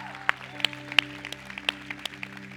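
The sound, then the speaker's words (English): Sparse, scattered handclaps from a church audience, given for people who raised their hands before a time of prayer, a dozen or so sharp individual claps spread unevenly over a couple of seconds, fairly faint above a steady low electrical hum, with no one speaking. “Before we go into a time of prayer with them, let's just give them a round of applause for raising their hand.”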